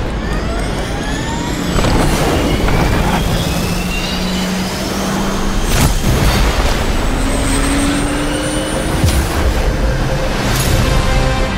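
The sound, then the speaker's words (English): Jet engines spool up with a loud, steady roar as several whining tones climb gradually in pitch, punctuated by a couple of sharp thuds. No one speaks. “And then after the reveal, then we have the rise, basically, the built-in rise by just having a shot of the jet engines powering up.”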